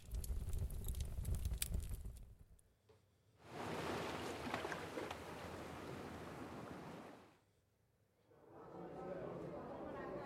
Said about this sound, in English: I think the first one was fireside